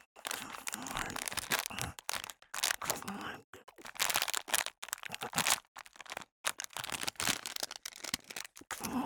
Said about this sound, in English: Oh, it's a new bag of Champion Chicken Cat Treats. Oh man, can you taste the chicken already? Let's tear a hole in the bag.